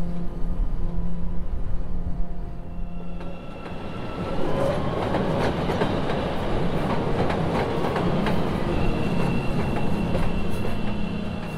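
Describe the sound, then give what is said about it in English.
A CTA Blue Line subway train rolls steadily along the tracks, a loud continuous rumble with rattling clatter and faint tonal whines, growing busier and noisier partway through. No one speaks. “And because of the blue line I take it, I thought to myself, you know, one day that car will roll up and what are you gonna do?”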